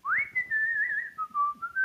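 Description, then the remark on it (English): A person whistles a short, wavering tune, the clear pitch rising, holding, then stepping down and back up over a couple of seconds with no other voices. “he just kind of like stands there with his saber and leans against the back of the cart and whistles.”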